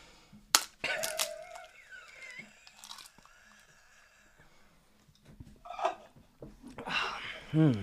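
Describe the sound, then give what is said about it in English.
Eggshell crunching as someone chews an egg: several sharp, brittle cracks at irregular intervals, with wetter chewing and faint vocal sounds between them, ending in a louder crunchy burst. “Got a little eggshell crunch.”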